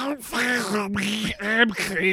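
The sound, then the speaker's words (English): A person imitates a duck with a rapid run of four or five nasal, buzzy quacks, fairly loud, with only brief breaks between them. “Here's a quack sample.”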